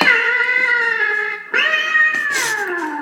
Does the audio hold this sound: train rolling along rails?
no